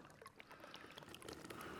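Water pours steadily into a container, a continuous splashy, bubbling rush with small gurgles, moderately loud, with no talking over it.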